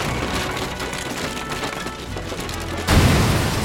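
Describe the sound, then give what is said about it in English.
A large water tower next to a barn, one of its legs hacked away, falls and crashes into the barn: wood crashes and splinters, with a steady rush of cracking and creaking that swells into a louder, heavier smash near the end. No one speaks. “The large container fell and crashed into the barn.”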